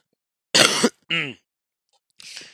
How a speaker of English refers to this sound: So it's like a cough to clear your thing,